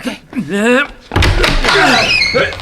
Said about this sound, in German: Achtung, ich werf mich gegen die Tür. Das ist ein Notfall. Geh zur Seite.